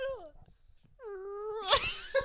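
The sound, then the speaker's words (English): A person tries to imitate a cat's purr, producing a couple of sustained voiced tones that slide slightly in pitch, ending in a brief raspy, buzzing burst. “It sounds like a whoopee cushion.”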